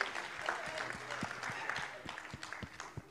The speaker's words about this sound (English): Like, come on, guys, give me, like, you should get a round of applause for that.